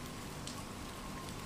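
Steady rain patters on a surface on a stormy night in Barbados, a dense, even hiss with soft scattered droplet taps, continuous and fairly quiet throughout, with no voices.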